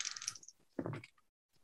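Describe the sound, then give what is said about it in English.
Dice clatter across a tabletop in a short rattling roll, with a bright tumbling start and a duller knock as they settle. It's fairly quiet, with no voices. “Get that one, dice.”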